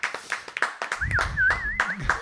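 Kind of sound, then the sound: crowd, applause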